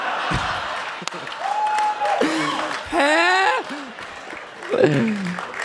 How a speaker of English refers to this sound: That's right. You're right to clap. So, a standing ovation.